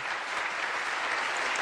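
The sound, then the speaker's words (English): A short burst of steady applause for a newly launched candle line, many hands clapping in a dense, even wash of sound with no voices standing out, holding at a constant level throughout. “Let's go ahead and hit the round of applause for the all candle right.”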